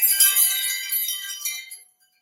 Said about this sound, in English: But anyway, so here's a wind chime I have. So the wind chimes bring in, if I can get it hooked back up there, bring in all the good spirits.